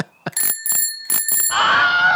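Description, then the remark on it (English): A bicycle bell sound effect, as used in movies, rings in two quick double rings, bright and metallic with sustained high overtones, then gives way to a broad hiss of noise. “But I love the fact that in a movie, just to like make sure you understand it's a bicycle, they always fucking put that sound effect in.”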